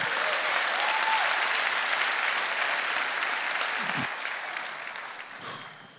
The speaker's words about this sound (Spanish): Dale un aplauso a Cristo.